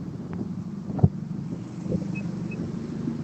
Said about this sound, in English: Jeez, what are you on the literal highway right now? Like, what's going on? That is a Ford Fiesta. It sounds like a diesel dump truck. Ford Fiesta. Yeah. Yeah. Straight piped and connected to a propane gas tank.